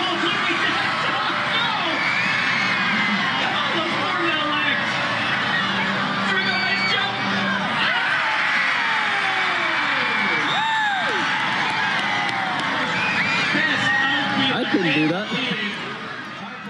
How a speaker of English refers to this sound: That's the crowd going wild at an Edmonton Riverhawks baseball game a little earlier this year. They weren't cheering for the home team, but for a dynamic duo,